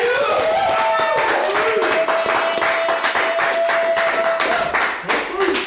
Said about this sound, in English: Yeah! It's the most applause I've ever received for any reason.